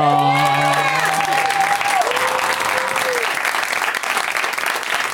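An audience breaks into loud, sustained applause as four guests are welcomed, with shrill whoops and cheers riding over the clapping at the start before settling into a steady wash of hands that eases slightly toward the end.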